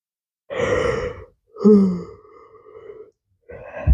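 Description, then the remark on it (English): A long, drawn-out yawn from a person, with breathy voiced stretches rising and trailing off over several seconds, followed by a short exhale at the end. “That yawn was a signal for my brain to wrap it up and talk about something else.”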